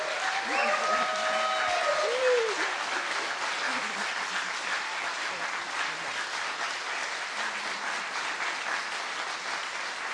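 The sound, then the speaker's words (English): A crowd applauds steadily for about ten seconds to honor a man who helped build homes in Mexico, a dense, even wash of clapping, with a brief voice or cheer rising over it near the start. “We're going to show a brief video, but first, can we just give him a round of applause?”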